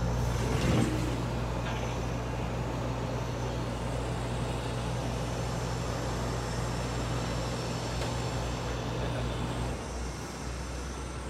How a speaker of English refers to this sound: I'm sorry, the air conditioner just turned on. Let me see if I can turn it off.